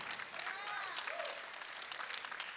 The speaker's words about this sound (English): And if you watch it online, they're clapping.